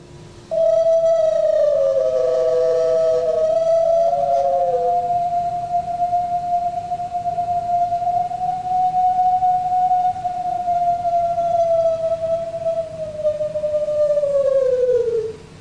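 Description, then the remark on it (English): A recorded single long, sustained 15-second howl holds a steady mid pitch, rising slightly and sliding down at the end, with a few other overlapping howls briefly joining near the start. “One I want you to hear, if you can hear it, is the length. So this is a 15-second howl.”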